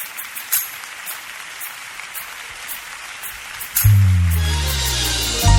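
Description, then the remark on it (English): A large crowd claps steadily in a room, applauding God, a wash of hands with scattered sharper claps, before a loud sustained musical chord swells in over it near the end. “Applaud God in this room, everybody.”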